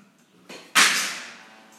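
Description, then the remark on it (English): A phone drops onto a hard surface: a light knock, then a sharp, bright clatter that rings briefly and fades away. No voices are heard. “Made me damn drop my phone.”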